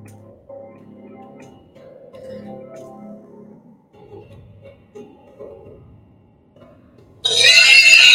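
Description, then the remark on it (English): A man's voice imitates a pig, with low snorting grunts for several seconds, then bursts into a loud, shrill squeal near the end. “Pig guy again.”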